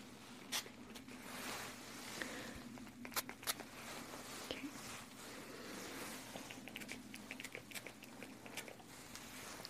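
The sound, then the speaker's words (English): Several short, hissy bursts from a spray bottle of multi-benefit hair treatment sprayed onto hair, including the back, spaced irregularly over a low steady background hum, with softer clicks and rustles between the sprays. “So let me spray it a bit.”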